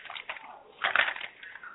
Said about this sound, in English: quit rattling paper so I can hear you right here.